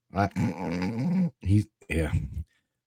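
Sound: imitated snoring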